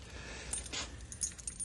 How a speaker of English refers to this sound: Here it is. Not a very big package at that. Here, I'll open it up.